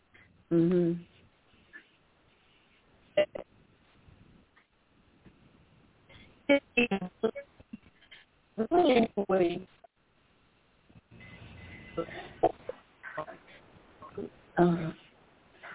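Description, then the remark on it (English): A woman's voice over a phone line cuts in and out, arriving in short garbled bursts separated by dropouts and silence, thin and tinny with the choppy, broken quality of a bad connection. “Yeah, it sounds like her phone's breaking up even more.”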